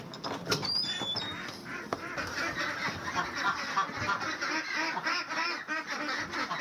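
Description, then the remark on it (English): A dense chorus of many pastured ducks at Ducklehead Ranch in Vintondale, Pennsylvania, quacking continuously and overlapping as they are let out at 7 o'clock in the morning, loud, with a few high chirps from small birds in the background. “I raise pastured ducks for their delicious duck eggs with the biggest yolks you've ever seen.”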